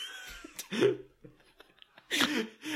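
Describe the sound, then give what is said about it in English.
A voice improvises a short, sputtering theme song for a segment made of mouth-fart noises, with a few loud raspy blasts separated by quieter gurgles and breaths, wordless. “Let's keep this tradition going of just kind of, you know, just improvised mouth farting theme songs for our segments.”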